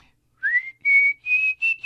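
A person whistles a slow, steady tune in clear, sustained notes, several held tones in a row with short breaths between them, close and fairly loud with no talking.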